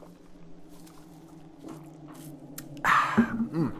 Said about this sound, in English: And one second, let me take a drink of water real quick.